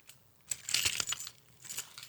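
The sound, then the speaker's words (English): A set of apartment keys is lifted from a paper-cluttered desk with a short bright metallic jingle, then a second quieter rattle of clinking metal a moment later, with no talking. “His keys to the apartment are right here.”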